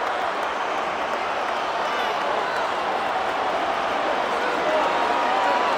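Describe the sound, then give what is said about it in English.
A huge football stadium crowd of 50,000 in Ireland roars continuously after a Manchester United goal in added time makes it 1-1 in a pre-season match. It is a dense, steady wall of cheering and shouting that swells slightly near the end, with no clear individual voices. “Listen to that roar.”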